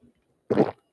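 A single wet, squelchy gulp of drink, taken by a man who is eating a honey bun, brief and fairly loud, with no talking around it and a faint murmur just before.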